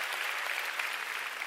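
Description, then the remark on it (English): An audience at a church service applauds for Jesus, a steady, dense wash of many hands clapping at an even, sustained level with no talking over it. “Come on, let's give Jesus a big round of applause this morning.”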